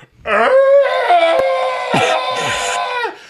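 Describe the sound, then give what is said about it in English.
A person imitates an elk bugle with one long, loud, strained vocal call that climbs into a high, whistling squeal, holds for about three seconds, then cuts off abruptly. “That'll scare the living daylights out of you if you've never heard an elk.”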